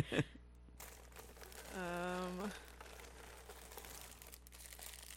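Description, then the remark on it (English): Plastic bird netting, meant for protecting strawberries, crinkles and rustles steadily for several seconds, a soft crackly texture opening with a sharp rustle, and a brief hummed voice tone appears midway. “This is bird netting.”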